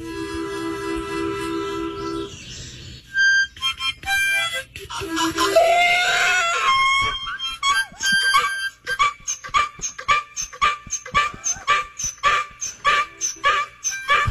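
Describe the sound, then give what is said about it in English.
Sustained harmonica notes open, then a donkey known for singing joins in with short, rhythmic huffing brays, pulsing steadily like a beat alongside the reedy tones. “Number one, the donkey was more beatboxing than singing there.”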